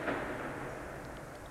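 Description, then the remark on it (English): Faint, muffled gunfire at night: a soft dull thump at the start that fades into a steady low rumble, with no voices present. “Lots of gunfire tonight.”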